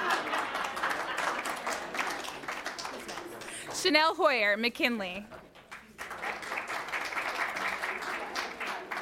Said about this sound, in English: They're telling me to go slower, so if you'd like to clap in between, go for it.